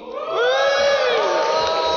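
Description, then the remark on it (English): A small group of players bursts into loud, sustained cheering and high whooping at a natural 20 dice roll on a constitution save, the excited yells overlapping and holding steady for about two seconds. “Woo! I'd cheer for that.”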